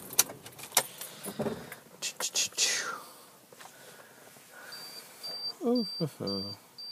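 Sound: car being turned off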